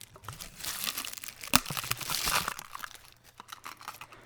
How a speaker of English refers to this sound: Now, what I'm going to ask you to do is take the tissue paper and put it over one end of the paper towel tube. Uh-huh. And then affix it to the end of the tube by putting the rubber band around it.